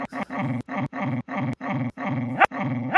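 A dog barks and growls in a quick run of about seven loud, throaty bursts with short gaps between them, and no one speaks.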